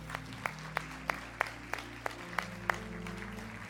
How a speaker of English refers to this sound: Praise the Lord. Can we give the Lord a hand clap of praise for these men?